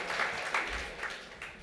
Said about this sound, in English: So we give a round of applause